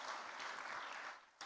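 Audience applause fills the moment, a steady dense wash of many hands clapping, easing off briefly before a fresh burst of claps at the end.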